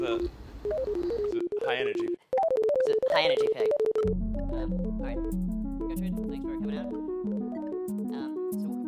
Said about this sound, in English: The beeps you're hearing are real-time signals from the neural link in Gertrude's head. So as you can see, we have a healthy and happy pig, kind of loving life, and she's had the implant for 2 months.